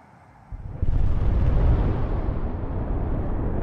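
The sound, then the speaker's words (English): A faint lull breaks into a deep, distant boom that swells into a heavy, sustained rumble, low and rolling like a far-off blast echoing across open ground; an explosion heard by residents of the coal mining town of Mezhdurechensk at two minutes to one in the morning on a cold Thursday night in March. “A moment after Captain Kudrinsky said, "Everything's fine," the residents of the coal mining town of Mezhdorachensk were woken by the sound of a distant explosion.”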